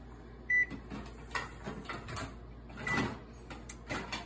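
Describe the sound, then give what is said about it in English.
An oven gives one short, high-pitched electronic beep to signal it has preheated for baking a batter poured over strawberries, followed by scattered clatters, clicks and rattling kitchen noises from dinner being made, with no talking. “The oven is preheated, ignore the background noise, we are making dinner.”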